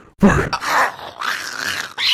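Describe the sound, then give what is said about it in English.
A man's voice imitates a dog barking: several gruff, throaty woofs and growls in quick succession, loud, with no other sounds around them. “Motherfucker was barking over here. And then he was like, bark.”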